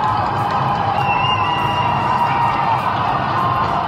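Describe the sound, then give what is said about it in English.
A large crowd in Melbourne, Australia, cheers and shouts continuously as the city's sixth lockdown ends at midnight, a dense roar of many voices with occasional whistles rising above it, loud and steady throughout. “Yeah, so that's the sound of some of the celebrations from videos people have posted on social media as the clock struck 11:59 p.m., pretty much like New Year's Eve,”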